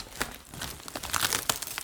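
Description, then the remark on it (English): Wrapping paper crinkles and rustles as Little Dazzy Donut's gift, a book of poems, is unwrapped, with sharp, irregular crackles and a few brief tearing bursts over about two seconds, no voices. “Okay, let's open Little Dazzy Donut's gift next.”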